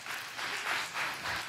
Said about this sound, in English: And I think it has been a wonderful series, has it not? Cue applause.